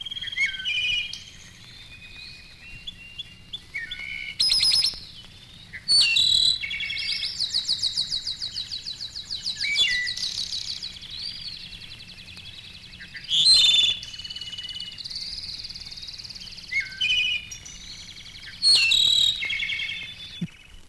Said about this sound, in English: Last but not least, one of the most beautiful and magnificent of all songbirds, besides the enchanting English nightingale, is the Mexican clarino. His liquid-like bell notes excel the most delicately man-made music box. Listen.